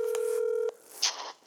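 A phone number being dialed: one steady electronic keypad tone holds for under a second, then cuts off into short hissy, crackly bursts of line noise. No one speaks.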